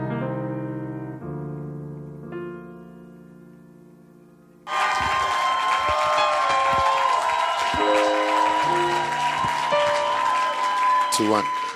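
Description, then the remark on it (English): Held keyboard chords play alone for a few seconds, then a large church audience, standing to welcome their pastor, erupts into loud, sustained clapping and cheering that carries on over the music to the end. “Why don't you stand to your feet, clap, shout, and welcome our very own pastor”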